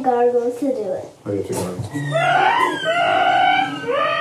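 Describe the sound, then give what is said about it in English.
Someone imitates a dolphin by gargling, making a string of high, wavering squeals and chirps that rise and fall in pitch. The squeaks are loud and run almost without a break. “I can make a dolphin noise.”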